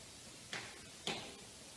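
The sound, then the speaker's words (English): Two quiet, dull knocks on a wall or floor land about half a second apart, muffled, with only faint background hiss around them and no talking. “Can you bang twice on the wall or on the floor? Two knocks.”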